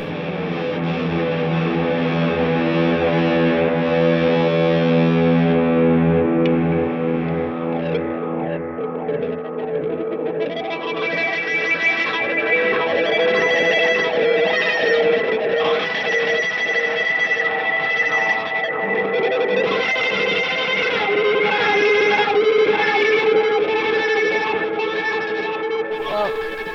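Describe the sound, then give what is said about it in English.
Bowed electric guitar, heavily distorted, drawing long sustained droning tones that swell and shift with echoing effects, loud and continuous throughout. “you really have great bow technique”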